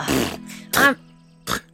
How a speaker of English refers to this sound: Non-rooster folk usually don't like this. I start spitting it out and coughing it on the ground.